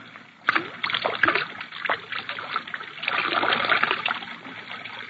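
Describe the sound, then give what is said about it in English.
Liquid splashes and trickles steadily for several seconds, a continuous pouring sound with gurgling bursts, as most of a half-full bottle of whiskey is poured out in the dark. “Ah, there's the whiskey, still half full. Pour most of it out, so that it will look as though we had even more to drink.”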